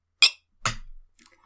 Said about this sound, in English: So, from the moment our glasses clink, we are not allowed to talk about this scotch. If we do, we lose. Here we go.